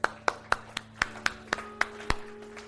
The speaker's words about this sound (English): Let's give a hand clap for those that have said that prayer.